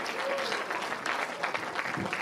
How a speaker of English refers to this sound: Wow! Give this lady a big round of applause. Thank you for playing, ma'am. You were awesome.